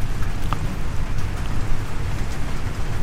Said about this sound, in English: Is it raining there? Yeah. Yeah, it's hard here. Yeah. Nothing I can do about that. That's a tin roof.